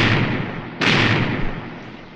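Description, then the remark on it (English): A single heavy cannon blast from a pirate galleon firing a broadside at a Spanish fort bursts out about a second in, loud, over a continuous noisy rumble, then slowly rolls away into the din. No one speaks. “Aye, there's the sound of adventure. Cannon firing.”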